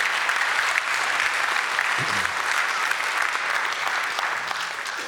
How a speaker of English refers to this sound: So thank God and praise Jesus and give yourself and give the Lord a big clap again.